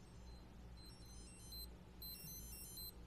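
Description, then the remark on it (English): A wristwatch alarm left set from a trip beeps in thin, high-pitched electronic chirps, two quick bursts of rapid beeping, fairly faint over a low steady background hum, with no one talking. “That's one of those alarms from a trip. Okay, Lord. Yep. I was like, whose watch is that?”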